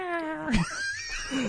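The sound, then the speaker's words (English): A voice imitates a cat, making a drawn-out, wavering meow with a sliding pitch, then a shorter rising mew. It is fairly loud, with no other talking. “That's all I could do is guns and cats.”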